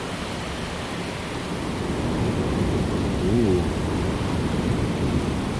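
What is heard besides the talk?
thunder rumbling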